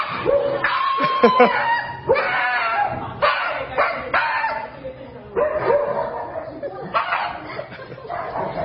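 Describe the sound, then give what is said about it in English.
A Shiba Inu at the vet lets out a string of loud, high-pitched screams, wavering shrieks and yelps in repeated bursts with hardly a pause between them. “I think it's so funny how this dog at the vet is super happy, but also scared at the same time,”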